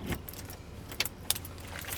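Metal keys jangle and clink in a lock, with a few sharp bright clicks and rattles over a steady low rumble of background noise.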